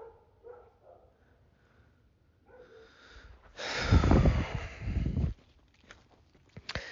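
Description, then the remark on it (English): Dogs barking and snorting in a loud, rough burst of scuffling noise midway, after a quieter stretch of shuffling, then settling into softer sounds with a few sharp bursts at the end. “God, what are these dogs doing?”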